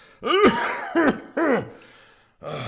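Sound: cough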